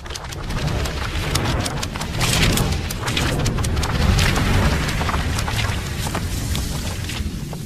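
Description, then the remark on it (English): The Marvel Studios logo intro, heard as a dense, steady rush of fluttering, papery flips and crackles over a low rumbling boom, sustained throughout without speech. “Oh, those were these were all a bunch of images flashing those sounds that sound like paper. Paper like I want to say Marvel. It's Marvel.”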